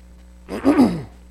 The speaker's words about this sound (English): Excuse me. Cindy loves when I clear my throat.